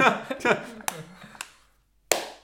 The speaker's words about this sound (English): Oh, well, no loud claps. That's a high five, everybody.